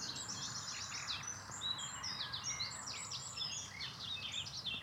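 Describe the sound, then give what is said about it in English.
A nightingale, buried deep in dense undergrowth, sings a continuous stream of rich, varied whistles and trills, slightly muffled, over a steady low rumble of building traffic. “There is one trying to sing his way through, buried deep in the undergrowth.”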